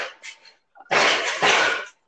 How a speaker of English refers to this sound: Oh, okay. The wind kind of slamming the door there.